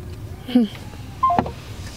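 Two brief electronic phone tones sound a moment apart after a voicemail greeting on a foundation's business line, an old cell phone number; the first slides slightly downward and the second is a steadier beep, both fairly clear over a low background hum with no talking.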